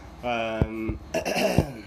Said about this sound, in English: sorry, clearing my throat, smoking a little bit. Anyways, excuse me. Sorry about that.